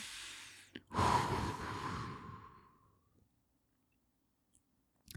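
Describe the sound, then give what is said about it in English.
A voice imitates a heavy, creepy breath of a man breathing right across from a woman's face: one long, loud exhale lasting about two seconds, trailing off into quiet, with a faint click at the end. “And he just gets really close to her. He's breathing right across from her face.”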